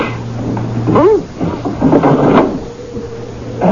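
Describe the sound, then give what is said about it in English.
A window is pushed open with a drawn-out wooden scrape and a short rising-and-falling creak, followed by softer rubbing noises over a steady low hum. “Open the window, sister.”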